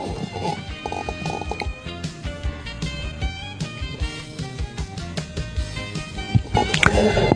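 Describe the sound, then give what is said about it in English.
A voice imitates Ben Affleck farting with a long, loud, sputtering raspberry that rumbles and flutters continuously for several seconds, with a final burst near the end. “No, he farts like this.”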